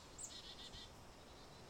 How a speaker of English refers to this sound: Oh, we got some birds moving through. Black-capped chickadee.